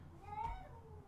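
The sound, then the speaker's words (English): A single short, faint meow from a cat downstairs, rising briefly over a low background murmur. “Shout out to the cat downstairs.”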